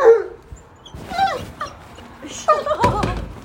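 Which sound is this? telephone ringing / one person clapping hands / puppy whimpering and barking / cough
puppy whimpering and barking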